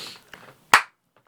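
One hard, loud hand clap, attempted as a Hulk-style thunderclap that hurt the clapper, rings out sharply and dies away quickly, following a much fainter tap a moment earlier; no one speaks.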